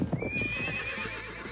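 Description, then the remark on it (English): A horse lets out a loud, shrill whinny that wavers and trails off, while hooves clop along underneath. No one speaks. “Hey! Whoa! Hold your horses!”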